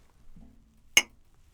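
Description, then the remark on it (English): A single bright clink of beer glasses tapped together next to the microphone, sharp and ringing briefly before fading, with only a faint low murmur beforehand. “The clink me over here next to the mic.”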